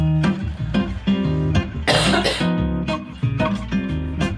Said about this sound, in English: Six seasons, still haven't found that cough button. Yeah, we need one.